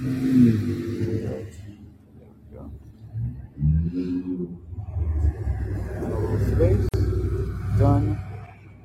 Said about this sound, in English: Oh, this traffic is pretty bold, huh?